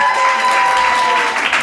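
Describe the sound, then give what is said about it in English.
An audience at the Disruptor Series Live event at the Disruption Company claps steadily and loudly for Jean-Marie Dru, dense overlapping applause filling the space without any voices rising above it. “Round of applause for Jean-Marie.”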